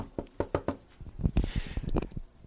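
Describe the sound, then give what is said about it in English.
Four quick, sharp knocks on a door in a brisk rhythm, followed by a busier stretch of muffled thuds and rustling. No one speaks. “I hear another knock on the door.”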